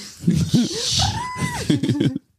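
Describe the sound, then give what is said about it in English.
A person imitates a dolphin: a fast burst of chattering clicks and squeaks, then a high, sustained whistle that rises and falls, ending in another run of rapid chatter. “Can you make a dolphin sound?”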